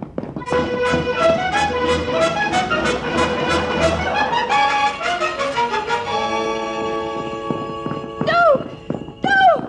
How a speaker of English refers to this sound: Giddy-up, you horse, you. Giddy-up.